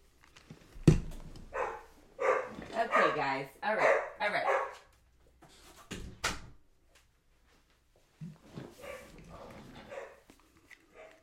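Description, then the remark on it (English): A dog barks repeatedly in short bursts, with a sharp thud of a door being closed partway through and a voice talking intermittently. “Hopefully the barking isn't bothering you, but this is just my real life.”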